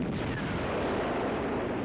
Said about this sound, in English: Nothing like a few explosions and a lot of flame. Very effective.